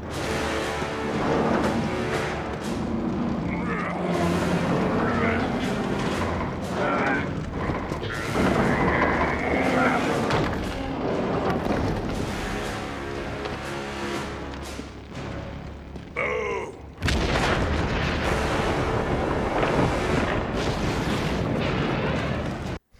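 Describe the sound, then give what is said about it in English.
A loud, dense rumble of explosions and battle noise fills the scene, with booming blasts and churning mechanical clatter, a brief dip, then a fresh powerful blast around the end. “I just love that part where he basically calls his own explosion.”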